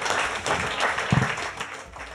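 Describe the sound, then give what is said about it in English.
A live audience applauds, a dense, steady wash of many hands clapping at once, sustained for a couple of seconds at moderate loudness without tapering off. “folks, massive round of applause for Shane”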